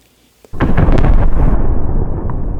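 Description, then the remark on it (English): A massive explosion blast shakes a mountain, erupting suddenly after a brief quiet moment: a loud, broad rumbling roar that stays powerful and sustained for a couple of seconds with crackling bursts inside it. “A massive blast shakes the mountain.”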